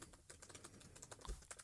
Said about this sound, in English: Oh, he's typing away. He's typing fast.